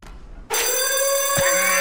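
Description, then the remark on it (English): After a brief quiet moment, a loud, bright electronic alarm bell, a gym lunk alarm that goes off when someone slams down weights, bursts in and rings continuously with a sustained, harmonic-rich tone that holds steady to the end. “There's your bell. The lunk alarm.”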